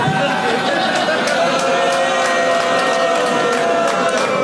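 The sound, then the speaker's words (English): A show's audience boos loudly and continuously for several seconds, a dense, sustained drone of many voices with sharper shouts and whistles breaking through now and then. “This is not a show with booing.”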